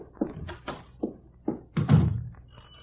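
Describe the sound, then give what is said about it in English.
Several dull thumps strike a door at a slightly uneven pace, the last few heavier and closer together, with a faint room hum between them and no voices. “Will you open the door?”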